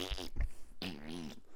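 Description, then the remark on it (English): A voice imitates a fart while peeing at a urinal, with two quick sputtering bursts, then a longer buzzing, wavering raspberry held for nearly a second, fairly loud. “I'm just trying to take a whiz, and then all of a sudden I fucking fart.”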